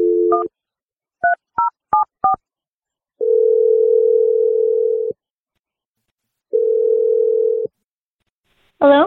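A steady telephone dial tone gives way to a quick series of touch-tone key beeps as a phone number is dialed from the radio show Brooke and Jeffrey in the Morning, then ringback tones pulse twice before a short burst at the end.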